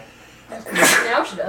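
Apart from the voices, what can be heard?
sneeze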